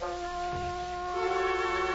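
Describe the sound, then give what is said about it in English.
A large courthouse clock bell tolls the hour, striking up to twelve over an empty town, its deep ringing tone humming steadily with a fresh stroke swelling in partway through, heard alone with no voices. “The courthouse clock struck the hour.”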